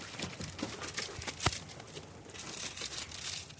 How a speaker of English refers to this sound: Tony, crumple the piece of paper up a little bit.